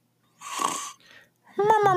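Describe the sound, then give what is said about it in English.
A voice mimics a security guard snoring asleep in a chair: a long, raspy breathy snore, a brief softer rasp, then a sudden voiced, snorting sound as he seems to wake for a second, fairly loud. “And then we can have like that super suspenseful moment where like, he's snoring and then he thinks he wakes up for a second.”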